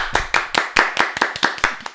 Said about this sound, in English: Ladies and gentlemen, let's applaud our contestants.